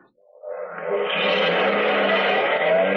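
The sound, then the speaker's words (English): A car engine starts up and revs, its steady roar building quickly and holding loud as the vehicle pulls off, with no voices. “Put him in a car.”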